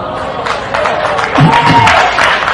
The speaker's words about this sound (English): It's not Father, Son, and Holy Bible. No. It's wow. not Father, Son, and Holy Bible. I still can't believe they applauded that line.